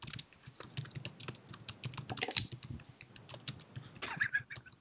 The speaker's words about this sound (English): To hear the typing. Let's do it.